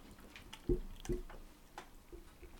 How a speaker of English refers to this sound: Hold on. I'm going to drink a little bit more while you're setting up because I'm very worried. You really should. This is the part I usually cut out of me pouring rosé.